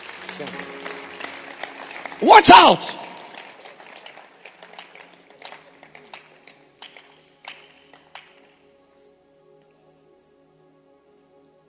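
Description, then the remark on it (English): A church audience claps for the pastor, a dense patter of many hands that gradually thins into scattered claps and fades out after several seconds, with a loud voice shouting over it early on. “Let's clap our hands for the pastor.”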